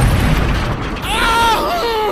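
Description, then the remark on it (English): A heavy mortar shell explosion rolls out as a deep, loud rumble for about a second, then a voice cries out with strained, wavering tones over the fading roar. “If you hadn't have given the order, that mortar would have cut us all to pieces.”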